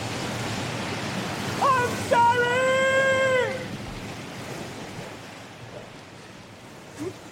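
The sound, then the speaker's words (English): Steady, hollow rush of rising sea surf at the end of a cave fills the space without pause, and partway through a short, high wailing cry rises over it before the churning water carries on alone. “The end of the cave. We can't go any further. That's it, then. That's it. The sea's rising.”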